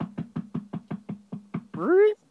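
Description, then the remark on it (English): A quick, steady run of about ten knocks on a door by a visitor who has come over with a son, each a dull, resonant thud, followed right after by a brief rising vocal sound. “And then, so you knock on the door. I answer the door, and...”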